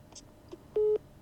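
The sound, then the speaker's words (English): A phone's incoming-call alert sounds as a single short, loud electronic beep, preceded by a couple of faint chirps, with no one talking. “Sorry, I'm getting phone calls.”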